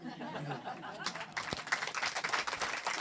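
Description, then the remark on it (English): After a second of quiet murmuring, a burst of brisk clapping starts and keeps going, dense and fairly loud, with faint laughter mixed in. “I clap you.”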